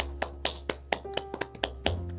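A short round of applause: about ten sharp, evenly spaced claps at a brisk steady rhythm, like one or two people clapping, over a low steady hum with no talking.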